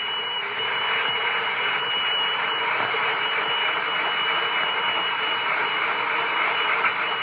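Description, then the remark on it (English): A toy fire engine runs loudly with a steady, buzzing mechanical whir that holds at constant volume for several seconds, unbroken, with no voices over it. “Oh, my goodness, Spangles, shut it off. Santa can't hear that order.”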